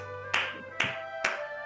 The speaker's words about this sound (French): J'applaudis.